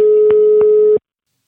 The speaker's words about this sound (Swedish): Nu ska vi se. Vi ringer Glenn, va?